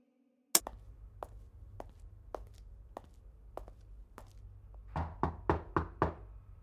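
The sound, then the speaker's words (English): Knocking on a door early in the morning: a series of sharp, irregular taps, then a firm burst of five loud, evenly spaced knocks at the end, over a low steady hum. “Goodness gracious, it's early even for this old lady. Who's there?”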